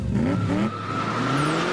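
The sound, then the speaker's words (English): A race car engine revs hard and climbs in pitch through quick gear shifts, loud, with a steady roar and no voices. “in its place BeeBop was suddenly sitting in a race car.”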